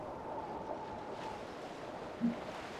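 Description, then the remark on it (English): A steady, unbroken rush of ocean waves and wind, a dense wash of noise that holds constant throughout with one brief low thump near the end. No voices. “The sound of the waves is very loud.”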